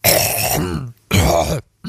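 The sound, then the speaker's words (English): Two loud, rough throat clears, a longer gravelly rasp then a shorter one after a brief pause, with a third starting just as it ends. No one speaks. “Clear your throat.”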